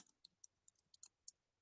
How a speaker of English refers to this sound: I was typing something, a comment, replying to a comment on Facebook